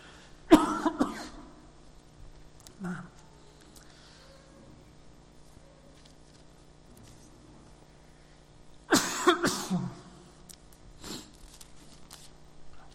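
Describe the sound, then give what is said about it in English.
A speaker giving a Bible talk coughs in two harsh, loud bursts several seconds apart, with a softer throat-clearing sound in between and quiet stretches around them; nobody speaks. “So just while I have a cough, just turn to page 724 for me, the book of Isaiah, chapter 40.”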